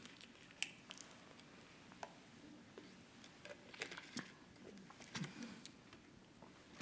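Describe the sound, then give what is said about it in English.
Quiet sipping of water: a few soft wet slurps and swallows with small clicks and rustles scattered across several seconds, no one speaking. “Let me get a sip of water, just a second.”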